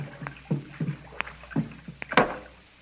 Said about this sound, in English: Well, here we are. Stop paddling, Kolo. I'll bring us up alongside now.